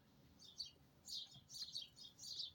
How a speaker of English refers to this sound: For some reason, I thought it was morning time because it's cloudy and it's raining a little bit. And it just reminds me of like early in the morning. The birds are loud, chirping.